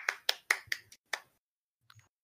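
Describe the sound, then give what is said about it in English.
A quick burst of about six sharp claps in an uneven rhythm, followed by a faint soft knock and near silence. “What's that clapping sound?”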